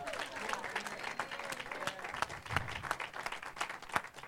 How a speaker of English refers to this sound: Yeah, let's clap for her.